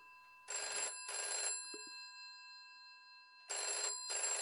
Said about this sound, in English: The house is calm and quiet when all of a sudden, the phone rings.